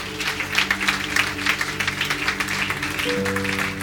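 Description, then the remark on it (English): A church audience gives a clap offering in appreciation of the apostle of the commission, a dense, steady burst of applause from many people lasting several seconds, with a low sustained musical tone humming underneath. “Please, with a clap offering, let's appreciate him.”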